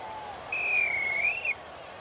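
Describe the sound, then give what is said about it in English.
A single sustained referee's halftime whistle blast at Hampden in the Hearts versus Rangers football match, with the score Hearts 0, Rangers 2, lasting about a second, shrill and slightly wavering in pitch, rising clearly above a steady, low background murmur. “And yeah, at the break of the moment, unfortunately, as Mark mentions, halftime whistle, Hearts 0, Rangers 2.”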